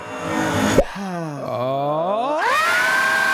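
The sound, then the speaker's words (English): A sharp thump cuts off a rushing hiss, then a wavering, drawn-out scream dips and swells before climbing into a high, sustained shriek over steady noise. “Well, audience, the screaming means it's time for our last debate.”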